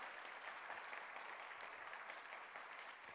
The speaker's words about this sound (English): Now clap your hands as you believe what I'm saying to you.